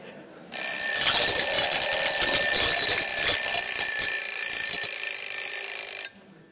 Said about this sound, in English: So when that alarm goes off and we have to get out of bed, let's hear it again. I like doing this.